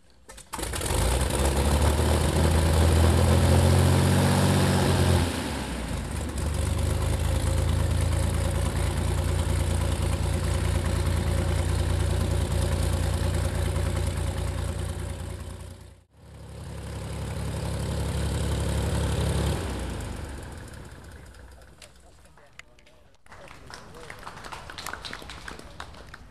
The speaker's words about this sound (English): it is a hand-started engine, so you won't hear any starter motor before it fires. A tall, somewhat well-built volunteer comes forward and swings the prop to get it started.